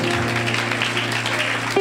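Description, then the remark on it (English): A church audience claps steadily to thank God after 14 days of fasting and prayer, a dense, continuous wash of many hands at a constant loud level, with a low sustained hum running underneath. “Oh, only the Christians are clapping.”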